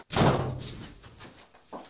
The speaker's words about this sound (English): My dog has figured out how to open the door with his paws, and I don't know how he did that. So I'm gonna have to handcuff him on shows from now on. Please forgive me for that interruption.